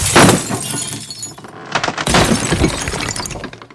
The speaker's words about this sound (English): They started breaking everything in the house.